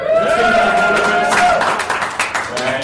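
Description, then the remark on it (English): A crowd erupts in loud applause and cheering after Boulder Bits is announced as number 2 for best culture in a company ranking. Sustained whoops and shouted voices ride over a dense patter of clapping that stays strong throughout. “We'll pause for the ones that get a lot of applause.”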